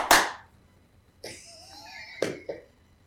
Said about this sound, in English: Clap twice.